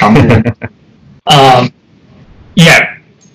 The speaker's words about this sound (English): Sorry, my dog is over here making all this noise.